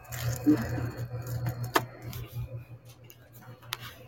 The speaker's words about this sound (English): There's a lot of crunching. Yeah. Crunching. That noise, whatever you're doing right now. I think that's just plastic.